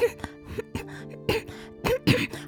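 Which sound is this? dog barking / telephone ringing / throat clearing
throat clearing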